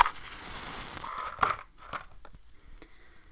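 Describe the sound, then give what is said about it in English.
Rosemary burned for smoke cleansing crackles with irregular dry pops and snaps over a soft hissing background, a sharper burst standing out midway before the crackle thins out and fades. “And it crackles nice.”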